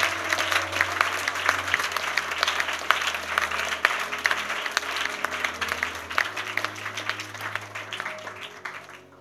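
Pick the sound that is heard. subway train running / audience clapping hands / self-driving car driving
audience clapping hands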